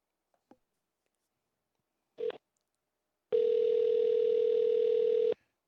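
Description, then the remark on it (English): A faint click, then a short electronic beep, followed by a steady, loud, two-second telephone tone as a call is placed to Taco Bell. No one speaks. “Let's try to call Taco Bell again.”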